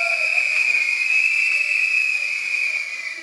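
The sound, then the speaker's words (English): A whistle is blown in one long, steady, shrill blast that holds for the full few seconds, loud, with no talking over it. “Can you blow your whistle?”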